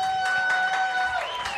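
A comedy club audience applauds and cheers for themselves for coming out, in a steady, dense wash of clapping, with a thin sustained whistle-like tone running through it for just over a second.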